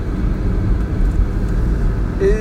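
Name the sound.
car being parked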